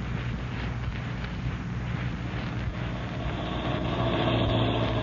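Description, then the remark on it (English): A steady, low engine rumble runs throughout, continuous and building slightly toward the end as a car idles or rolls up to Shack 6 at Hyla's Cabins. “You drove me so close to this door, you can sit right here and still satisfy those nosy ears of yours.”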